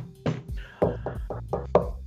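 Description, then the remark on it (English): Six or so quick, fairly loud knocks on wood, tapped in a loose, uneven rhythm with a brief gap after the first, no voices. “Knock on wood.”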